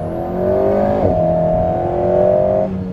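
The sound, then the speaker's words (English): A mid-engined four-cylinder sports car engine, sitting behind the driver's head, drones loudly and steadily in third gear, with little pops and bangs, briefly dipping with a crackly shift about a second in before pulling again, then easing off near the end. No one speaks. “I hope you can hear the little pops and bangs and things that are coming out here. This sounds good for a four-cylinder.”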